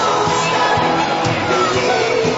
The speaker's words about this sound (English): And then the crowd went nuts.